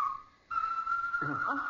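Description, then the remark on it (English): A bird calling near an old barn: a long, steady, high whistled note that briefly dips, then holds firm while a lower, wavering voice-like warble joins it near the end. “I do wish that bird would go away. He's probably got a nest somewhere in that old barn.”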